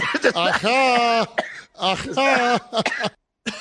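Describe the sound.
A recorded cough comes in several loud, throaty bursts with a strong voiced, almost groaning tone, separated by brief pauses, while another voice briefly chimes in.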